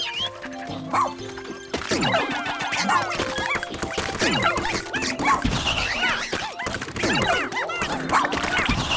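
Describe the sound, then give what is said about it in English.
A video game dog barks and yelps while attacking, its sounds tangled with busy electronic sound effects, crashes and music that run loud and continuous throughout. “Let's send the dog in.”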